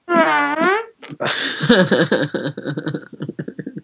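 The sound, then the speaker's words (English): A loud, buzzy fart sound effect lasting under a second, followed by a burst of rhythmic, pulsing chuckling laughter that gradually trails off. “Even the Queen of Britain farts.”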